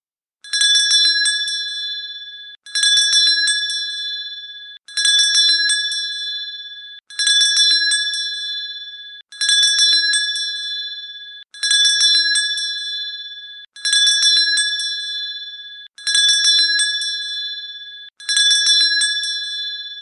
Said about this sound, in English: Let's start with just how long 20 seconds is. Listen for the bell. When it stops, the 20 seconds are up.